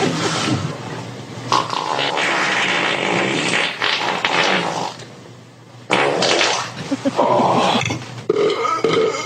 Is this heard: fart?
yes